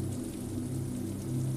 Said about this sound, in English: He senses the mischief in your eyes as you implore him to race ahead and run between the drops of rain.